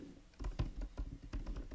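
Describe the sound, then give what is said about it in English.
Rapid keystrokes clatter on a computer keyboard, an irregular burst of crisp clicks and taps with no voices over them. “You can talk to people on there while typing.”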